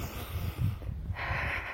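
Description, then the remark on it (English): Heavy, labored breathing of a person during a workout, a few rough, snorting exhales followed by a steadier rush of air, with no talking. “So make sure your heart rate is down, that you're not breathing heavily like me.”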